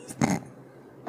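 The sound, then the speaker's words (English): A man clears his throat once, a short, rough, raspy burst, followed by near-silence and the faint start of another sound right at the end. “I was clearing my throat. I wasn't laughing at you.”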